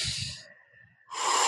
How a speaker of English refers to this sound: So when we're talking about tuning in with your body, embodiment, breath, like tantric principles, get back into your breathing. Mm. Breathe naturally and exhale as longer than you take that breath in.